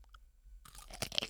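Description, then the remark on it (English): A wet crunch as someone bites into a Gus's half-sour pickle containing mustard, breaking into a burst of crackly chewing with a few sharp snaps after a brief moment of quiet. “Ooh. Crunchy.”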